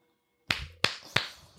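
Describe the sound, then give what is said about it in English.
Three sharp hand claps in quick, slightly uneven succession after a brief silence, each crisp with a short ringing decay. “Clap your hands if you prefer swallowing over spitting.”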